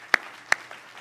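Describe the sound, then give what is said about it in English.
Two sharp, distinct hand claps about a third of a second apart, followed by a fainter one, sparse and uneven rather than a full crowd's applause, with no talking, as a church audience is asked to clap their hands to the Lord. “Let's clap our hands to the Lord today, shall we? Everybody, would you clap your hands to the Lord?”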